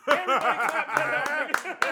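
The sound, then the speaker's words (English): A few sharp hand claps ring out at irregular moments, mixed in with lively voices chuckling and laughing throughout. “Everybody clap.”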